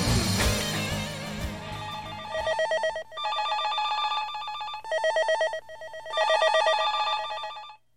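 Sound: telephone ringing repeatedly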